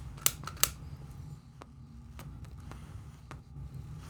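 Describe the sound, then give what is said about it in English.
Two sharp metallic clicks of lighters being flicked in quick succession to light cigars, followed by a few fainter clicks over a steady low background hum. “Yeah, we're using lighters.”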